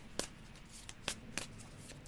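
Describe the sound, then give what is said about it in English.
A Light Seer's Tarot deck being shuffled, with several quick, crisp riffling snaps spaced irregularly over a couple of seconds, fairly quiet with no talking. “Give me a second to do a shuffle.”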